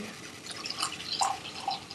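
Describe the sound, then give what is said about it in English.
Beer pours from a 25-ounce bottle of Le Bon Sancte Calabaza, a spontaneously fermented, oak-barrel-aged pumpkin beer, with a soft, steady gurgle and bubbly splashes, fairly quiet, with no voices. “is now pouring”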